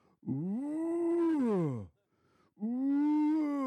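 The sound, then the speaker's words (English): A person imitates a male lion's roar with two long, deep, throaty bellows, the first swelling and falling over nearly two seconds, then a shorter second one after a brief pause, loud. “Sorry, was that like a lion?”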